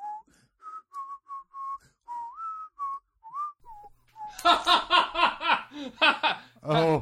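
A lone person whistles a bouncy Disney tune in short, clear notes for several seconds, then loud, rhythmic bursts of laughter burst in and take over.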